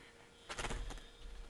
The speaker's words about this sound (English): I just had a grouse blow out of a tree right above me on the trail.